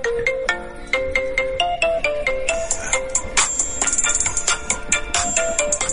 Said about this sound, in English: That is for real my ringtone.